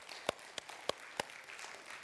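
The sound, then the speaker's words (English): Scattered audience applause: a soft, steady patter of many hands, punctuated by four sharp claps spaced irregularly in the first second or so, then a fading crowd wash. “Let's just give a hand clap, all right?”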